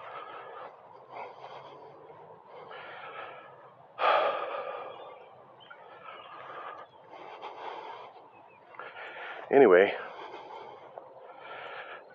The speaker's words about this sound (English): heavy breathing, walking up a hill.